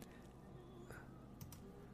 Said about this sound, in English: Oh, those are dice. So there's definitely dice and chess. There's some sort of game room.